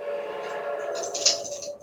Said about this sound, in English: But here comes the train.